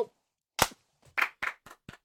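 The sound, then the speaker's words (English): Five sharp hand claps made to sync the audio, the first loud and isolated, then four quicker ones in an uneven rhythm, each a crisp bright snap with nothing else in between. “To clap like you do in the beginning. To sync it.”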